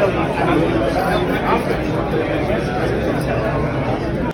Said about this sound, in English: And as you can see, the parking lot's full. There's probably about 500 people in there. And it's a good time had by all. All right, the card show right now. We're entering here at Orlando Gardens. Got a pretty good crowd right here.